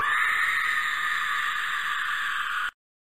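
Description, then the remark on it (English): A toy creature lets out one loud, sustained, shrill scream lasting under three seconds, holding steady before cutting off abruptly into silence. No talking. “We got the Porg Screaming, which is pretty awesome.”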